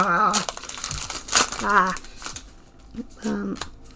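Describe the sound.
Crisp crinkling of a foil Pokemon 151 trading card pack being torn open, with bursts of rustling throughout while brief voiced sounds rise and fall over the top.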